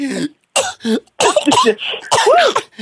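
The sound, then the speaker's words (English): A voice imitates a fit of coughing: a quick series of loud, rough coughs and throaty hacks in uneven bursts, with brief gaps between them and no clear words. “You know, as you were leading, that's like the minister about to call everybody to the altar and just start coughing.”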